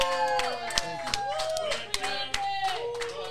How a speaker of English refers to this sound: Yeah, thank you, everyone. Yeah. Let's hear a round of applause.